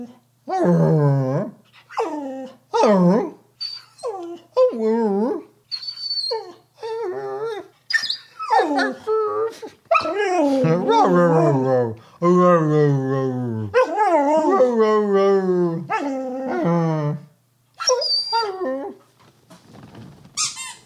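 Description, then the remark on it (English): A dog whines and grunts insistently, a steady run of high, squeaky, wavering cries mixed with low throaty grunts, nearly continuous for the whole stretch with no one talking. “I can't just play with you all day. You can squeak all you want.”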